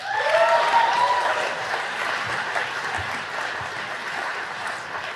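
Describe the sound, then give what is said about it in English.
A crowd of the graduating class at a Darden graduation ceremony applauds themselves in a steady, dense wash of clapping that holds throughout, with a brief cheer or whoop rising above it at the start before the clapping continues evenly. “So give a round of applause for yourself.”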